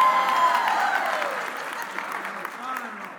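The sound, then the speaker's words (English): An audience applauds the speaker's wife turning 39, with dense, steady clapping that tapers off gradually over a few seconds, with a few voices and cheers mixed into the noise. “You could clap for that because she is 39.”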